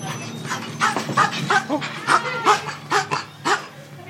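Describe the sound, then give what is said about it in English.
A small dog named Aloysius, at Tallulah Jones, a children's store in Denver, barks and yips repeatedly in quick, high-pitched bursts, with a steady low hum underneath and no talking. “an adorable little dog.”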